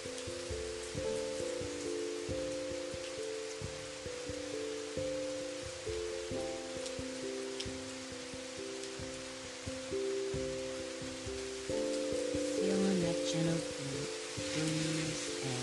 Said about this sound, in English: Bliss of rain.